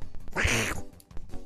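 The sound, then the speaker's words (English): A person imitates a duck, voicing the duck character Mortar, with one loud, nasal, drawn-out quack, followed by faint shuffling and a few soft clicks. “Using his very discerning duck eyes.”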